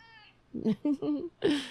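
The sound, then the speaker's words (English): A male cat meows several times in quick succession, short chirpy calls, ending with a longer, louder meow that trails off. “I love the way he meows, too.”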